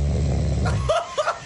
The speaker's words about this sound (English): Is she aware that she snores like this? No. Well, so because I brought this up to her before. This does not happen often. That's intense.